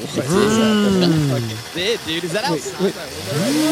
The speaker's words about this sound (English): Oh my god, it's a chainsaw. Is that the Fangoria chainsaw?